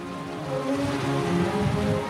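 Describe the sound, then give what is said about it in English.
Frigid water surging against a pier's concrete posts about 30 feet below makes a steady churning roar, with a low rumble and wild wind noise underneath and no distinct individual crashes. No one speaks. “Down below, about 30 feet or so, the frigid water crashes up against the pier's concrete posts.”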